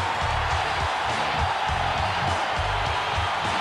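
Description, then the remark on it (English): A dense crowd of wrestling fans roars and cheers with clapping mixed in after Lance Storm's upset pinfall victory, a steady wall of noise for the whole stretch, with rhythmic low thumps pulsing underneath. “The fans have lost their mind.”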